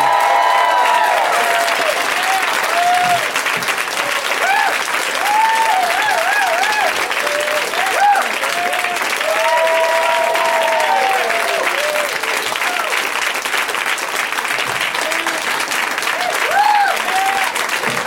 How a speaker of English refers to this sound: I know that's all for me. I know I'm the one you're applauding for. I appreciate it.